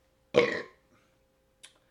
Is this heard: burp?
yes